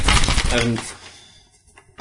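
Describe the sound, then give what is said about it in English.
A blank sheet of paper rustles and crinkles in a loud, busy burst for nearly a second, then fades into a few faint scratches, with a brief voiced murmur mixed in. “Well, you've got a piece of paper. Yes. You keep rustling, but”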